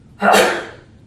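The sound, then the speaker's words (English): A single sharp sneeze erupts suddenly, loud, with a breathy burst that fades quickly into quiet. “God bless you.”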